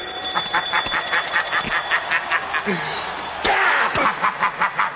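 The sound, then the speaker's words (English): An alarm clock rings loudly, a rapid, steady string of metallic pulses that carries on through the whole stretch with some other noise mixed underneath. “The alarm clock rings.”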